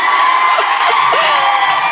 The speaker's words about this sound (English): The girls in the front row are all saying hi. You're like fucking 5 minutes late and screaming hi to each other, not to us.